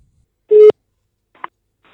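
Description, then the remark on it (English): A single short, steady telephone line tone sounds clearly while phoning the government of Iceland, followed by a brief click-like blip and then quiet. No one speaks. “So I thought I would phone the government of Iceland.”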